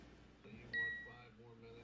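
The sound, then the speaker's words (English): A timer's plus button is pressed, setting the time in 1-minute increments, and gives one short, high-pitched electronic beep, bright and clear, rising above a faint murmur of voices and low background noise. “So like if we hit the plus button, it's going to beep.”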